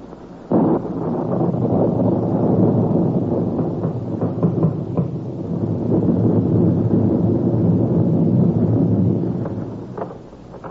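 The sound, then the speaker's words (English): On a stormy January night, a steady, roaring rush of wind sweeps in abruptly and blows continuously for about ten seconds, swelling and easing slightly before fading out at the end. No voices are heard. “But no blood-tub melodrama could open more realistically than on that stormy night in January when Mr.”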